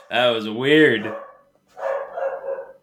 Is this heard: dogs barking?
yes